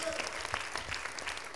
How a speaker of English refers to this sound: Come on, can we clap our hands and thank the Lord?